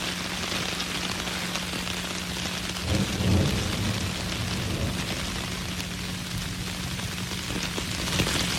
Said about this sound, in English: So this was on Lookout Mountain this week. My mom took this video during the tornadoes and lightning.